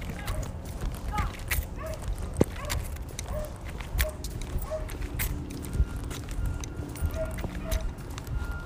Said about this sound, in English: Oh, that dog's dying. That dog's dying, man. You hear that?